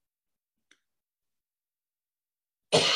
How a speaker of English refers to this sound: Sorry, y'all. I just cough when I get hot or cold.